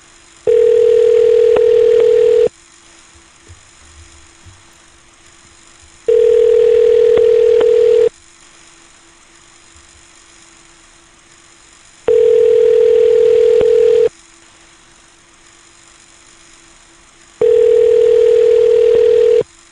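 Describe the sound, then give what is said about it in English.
A telephone ringing tone from an outgoing call: four long, steady buzzing rings, each about two seconds, separated by even pauses of quiet line hiss. Clear, with no one speaking. “But let's listen to some more phone calls, shall we?”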